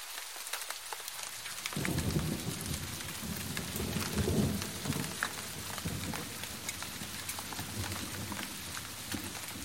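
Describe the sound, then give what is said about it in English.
Steady rain hisses across the whole clip, joined after a moment by low, rolling thunder that swells and rumbles beneath the downpour before fading back. No voices are heard. “It had been raining for 10 days straight when Sammy made the decision.”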